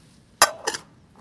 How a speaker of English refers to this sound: And then all I have to do is just shake it up with some ice, about 2 cups of ice.